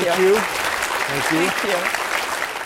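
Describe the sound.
Steady, dense audience applause fills the whole clip, a continuous crackle of many hands clapping, while a voice speaks briefly over it.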